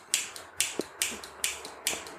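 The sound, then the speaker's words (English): A series of sharp, bright clicks repeats about every half second, each a crisp snap followed by a softer secondary tick, as a butane lighter's igniter is pressed again and again without lighting. “That thing's just clicking over there.”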